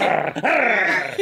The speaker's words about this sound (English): Oh, do you hear my dog? Yeah. I hope that's your dog.